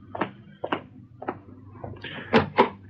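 A door being opened: a handful of wooden clunks and latch rattles, spaced unevenly, ending with two louder thumps as it swings free. No voices.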